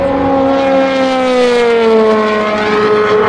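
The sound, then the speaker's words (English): An LMP2 prototype race car, one of the G-Drive cars, screams past on track, its loud high-pitched engine note sliding downward in a clear Doppler drop as it goes by, with no talking. “Another one of the G drive cars.”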